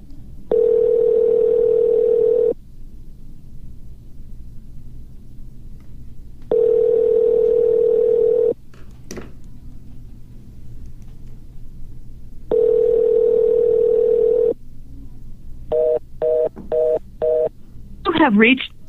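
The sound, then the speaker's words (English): A telephone tone sounds in three long, steady bursts separated by pauses, followed near the end by a rapid string of short keypad dialing beeps as someone places a phone call, all clear over a low background hum. “We'll give him a call and just say thanks for doing it.”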